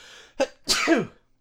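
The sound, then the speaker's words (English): A single loud sneeze: a short sharp intake burst followed by a bigger explosive release that trails off quickly, with no talking around it. “I got to sneeze here.”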